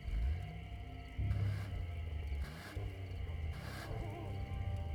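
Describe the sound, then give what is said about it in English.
A car engine starts and rumbles loudly and steadily, with deep low tones and several surging bursts as it revs and roars while the driver shifts gears. No one speaks. “The car roared to life, and Albie shifted gears.”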